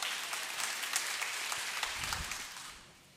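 Hands clapping in a dense, rapid patter of crisp slaps lasting about three seconds, steady and fairly loud before tapering off at the end, with a faint low voice briefly underneath.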